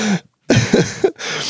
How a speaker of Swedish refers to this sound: Ungefär här harklar sig en äldre kollega